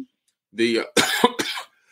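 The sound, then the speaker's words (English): Three harsh, raspy coughs from an asthma attack in quick succession, fairly loud, the first with a throaty voiced edge and the next two breathier and sharper. “I'm still coughing from this asthma attack.”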